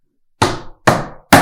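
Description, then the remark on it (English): Three loud, evenly spaced thuds of someone banging on a desk, each a sharp hit with a short ringing decay, with no talking. “start banging on the desk.”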